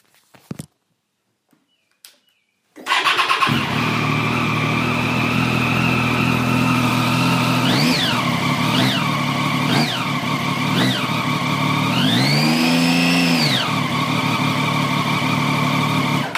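A motorcycle engine starts and idles loudly, then revs in four quick, evenly spaced blips before one longer, sustained high rev that drops back to idle.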